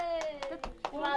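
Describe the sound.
Several people clap in a steady rhythm, about five sharp bursts in just over a second, while a voice holds a drawn-out cheering tone over the claps.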